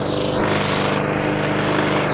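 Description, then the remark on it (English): A lawn mower engine runs steadily, a loud, continuous low drone with a buzzing rumble and a slight wavering in its higher whine, with no voices. “Let's Mow The Lawn!”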